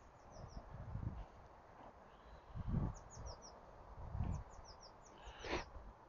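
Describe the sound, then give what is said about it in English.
Faint birds chirp in a field, with small clusters of quick high calls scattered throughout, over low gusts of wind and occasional soft rustling thumps. “There's birds. I don't know what they are. In the field.”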